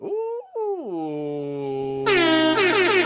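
An air horn sound effect blares loud, starting with a sliding, wavering tone that settles into a steady blast, then surges into a brighter, harsher, pulsing honk at the end.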